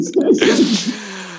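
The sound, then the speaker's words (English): A single loud sneeze bursts out with a sharp noisy blast, preceded by a quick voiced intake and trailing off into a brief breathy tail. “Excuse me. Bless you.”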